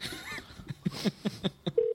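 phone number being dialed

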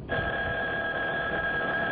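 telephone ringing

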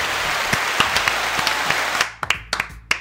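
applause sound effect

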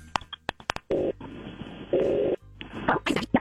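telephone call ringing tone

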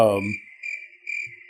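cricket chirping sound effect

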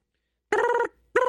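telephone ringing

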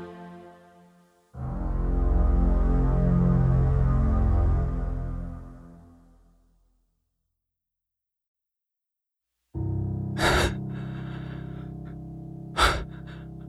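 gasping

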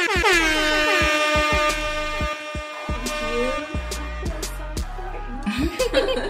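air horn sound effect

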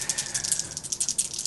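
dice rolling

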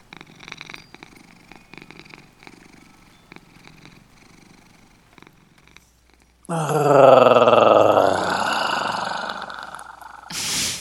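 cat purring

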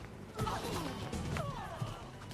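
glass breaking

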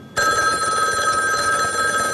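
telephone bell ringing

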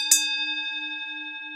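bell ringing

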